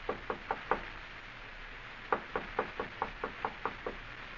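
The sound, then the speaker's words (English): A distinct knocking on a door: four quick raps, a pause of over a second, then a longer run of eight steady knocks, with no voices. “You'd better answer the door, my friend. Our visitor is here.”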